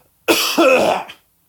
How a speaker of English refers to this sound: excuse me. I need to clear my throat here.